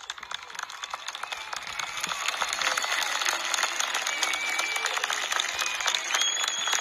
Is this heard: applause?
yes